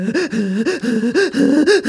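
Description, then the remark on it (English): A voice imitates breathless panting after rushing onto a plane: quick, rhythmic, voiced gasps repeating, loud and continuous with no other talk. “My face was puce and I was panting.”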